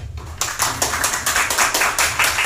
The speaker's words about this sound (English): The crowd applauds.